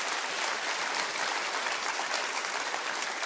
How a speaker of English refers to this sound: Can you clap your hands and say amen to that?